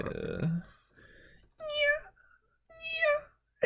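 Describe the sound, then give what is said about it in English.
Someone does two drawn-out, wavering meows in quick succession, a fairly loud vocal imitation of a cat, after a brief burst of voice at the start. “Are you a cat get in the business? Have you heard a cat having sex before?”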